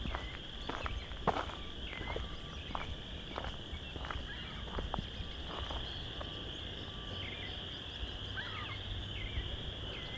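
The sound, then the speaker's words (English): A dense, steady chorus of chorus frogs trills continuously from the west end of Vine Mount Marsh in late March, with sharper rasping calls popping out intermittently over a low outdoor rumble; no one speaks. “We've got a lot of chorus frogs.”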